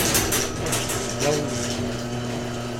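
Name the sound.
garage door opening mechanism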